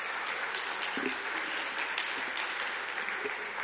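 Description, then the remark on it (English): A crowd applauds steadily for a group of performers on stage, a dense wash of many hands clapping at an even loudness throughout, with no voices standing out above it. “I said, don't clap for me.”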